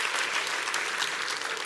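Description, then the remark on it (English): A church audience claps steadily, the dense patter of many hands filling the whole stretch at a fairly even, moderate loudness, with no voices standing out. “Clap your hands real big.”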